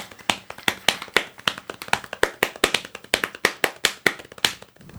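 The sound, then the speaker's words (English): A quick, uneven drum roll of hands slapping on a lap, about two dozen sharp dry taps over five seconds with no pause, played alone with no talking. “Give us a drum roll”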